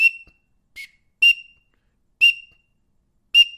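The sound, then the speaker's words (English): Five short, sharp whistle peeps imitating a male green-winged teal's call, blown on a handheld duck whistle with a small megaphone-like end, at uneven intervals, loud, with silence between notes and no talking. “That's what a teal sounds like. Green wing, male, blue wing, do not make that noise. Just green wing teal.”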